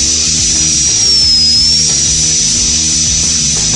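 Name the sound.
dental drill whirring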